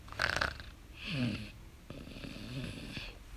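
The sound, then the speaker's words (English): A dog named Joey snoring loudly, with several rough, rasping breaths and snorts in an uneven rhythm. No one talks. “Joey snores quite loud.”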